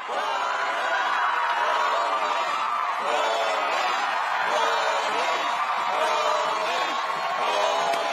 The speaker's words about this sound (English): Folks, that cheer you're hearing is for local favorite Bolin of the Fire Ferrets.